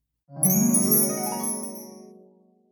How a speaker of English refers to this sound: Mama Llama hears the phone.